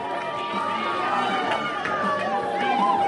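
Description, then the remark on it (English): A large hometown crowd in Nebraska roars steadily, a dense wall of many overlapping voices with occasional whistles cutting through, loud and sustained for the whole stretch without any break. “This crowd is really roaring here as we try to capture more of this.”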